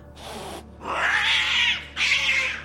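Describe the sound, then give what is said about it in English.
A cat gives a short breathy hiss, then lets out two long, rising-and-falling yowls, loud, with only a brief pause between them. “Skitters into the gravel of the car park, hisses again, and pads its way closer to the bar.”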